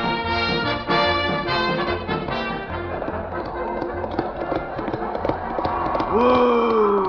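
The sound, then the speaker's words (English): Horse hooves clip-clop in a quick, steady rhythm in cold weather in the North Country, over a busy tonal backdrop, the clopping clearest at first before a long gliding tone rises near the end. “Whoa! Whoa! Oh, come on, horse, whoa!”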